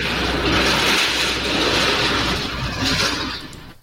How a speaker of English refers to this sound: That sounded like a jet plane going past your... flat there in Greenock.